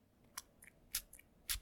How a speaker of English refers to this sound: So that was just absinthe being poured.